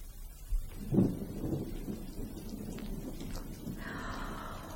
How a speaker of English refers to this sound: Oh, my, sounds like a storm blowing up outside, doesn't it, children? Well, no matter. We're safe and warm inside, aren't we?